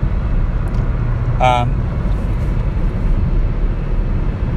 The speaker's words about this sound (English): By the way, again, as always, sorry if it's a little noisy. I am driving and don't have any noise cancellation stuff.